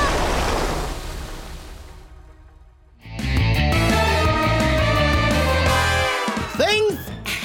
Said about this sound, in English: We have to zigzag against the current. It's too strong! The wind! The water!